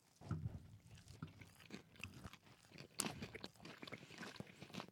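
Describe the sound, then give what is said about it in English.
Crunching and chewing of crisp Cheetos cheese puffs, cut in half, with repeated sharp crackly bites and munching throughout, heard alone without talking. “Very crunchy when we cut it in half.”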